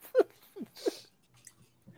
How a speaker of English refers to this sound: And apologies to everybody for eating.